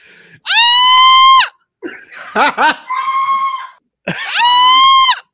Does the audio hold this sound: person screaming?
yes